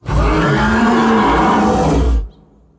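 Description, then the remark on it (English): A single loud, deep dragon roar of consternation, rough and rumbling, as the dragon struggles to come to a halt, holding for about two seconds before cutting off sharply into near silence. No one speaks. “The dragon roared in consternation as he struggled to come to a halt, beating his wings madly against the air, throwing grass and dust before him”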